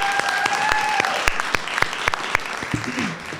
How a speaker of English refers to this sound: I just want to give a round of applause for our organizers, Youth Rise Together. Let's give it up for them.